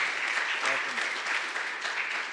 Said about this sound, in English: Let's give these guys a big round of applause. Welcome, guys.